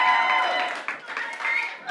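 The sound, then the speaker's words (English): A church audience in Birmingham applauds to welcome visitors from London, steady, dense clapping for about two seconds, mixed with cheering and raised voices, fairly loud throughout. “I just want to give you guys a round of applause.”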